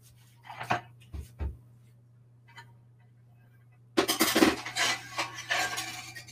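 A few sharp clinks and knocks of a baking dish, then a louder stretch of metallic rattling and scraping as it slides into the oven, over a steady low hum.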